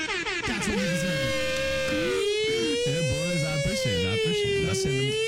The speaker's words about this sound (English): Air raid siren for the dankness, dude.